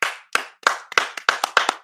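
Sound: hand clapping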